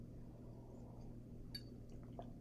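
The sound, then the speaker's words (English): A quick sip from a drink: a light glass clink midway, then a few soft, wet slurping sounds over a low, steady background hum, with no one talking. “Quick sip.”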